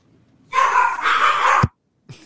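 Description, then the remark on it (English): A dog lets out one loud, drawn-out bark lasting about a second, followed after a short silence by a brief, quieter sound. “As well as the dog.”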